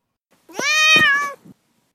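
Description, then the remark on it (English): A single drawn-out meow from a cat named Duarte, fairly loud, rising then falling in pitch over about a second, followed by a short soft trailing sound, with silence around it. “All right, now time for Duarte's Corner, where my cat Duarte will share his opinions on the book.”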